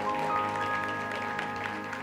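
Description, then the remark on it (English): A church audience clapping their hands in excitement about the word of God, a dense, steady wash of applause that holds at an even level throughout, with sustained musical tones humming underneath. “Somebody clap your hands and be excited about the word of God today.”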